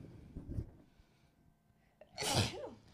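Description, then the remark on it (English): A single loud sneeze bursts out after a quiet pause, a sharp breathy explosion with a short lingering exhale, preceded by faint rustling. “Well, now I need to sneeze.”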